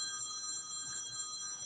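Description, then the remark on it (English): A telephone rings with a steady, bright electronic trill that holds at an even level throughout, fairly quiet, with no voices over it. “This might be important if it's ringing here.”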